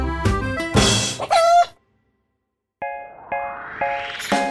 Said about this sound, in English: That's because chickens are animals that get scared easily. Chickens can be upset by all sorts of things, like weird noises or shadows or sudden movements.